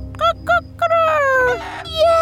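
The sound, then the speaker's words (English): A rooster crows: two short, sharp harmonic notes, then a loud drawn-out call that slides downward in pitch, followed by a final rising cry, with no talking. “Yes, crowed the rooster in agreement.”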